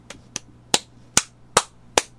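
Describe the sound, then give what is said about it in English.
A flat hand flops down onto a body six times in a steady rhythm, each a dull smacking thud. The first two land softer, the rest heavier, with no voices. “You're actually kind of flopping your hand down. And that gives some nice I've thud.”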